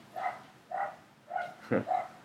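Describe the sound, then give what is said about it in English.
Dogs barking and yelping in a rough scuffle, about four or five sharp, fairly quiet barks in quick uneven succession, with no talking. “Oh, my God, these dogs are fighting.”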